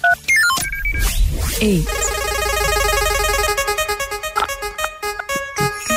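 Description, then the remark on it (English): Someone presses the last three digits of a cell phone number one by one on a keypad: a rapid string of electronic beeps and tones, some stepping up and down in pitch, no one speaking. A steady buzzy tone follows, then a quick pulsing run of beeps near the end. “Can you press the last three digits of your cell phone number one by one?”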